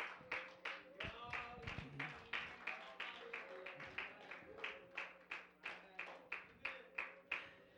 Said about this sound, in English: And somebody shout in Jesus' name. Clap your hands and you can be seated today.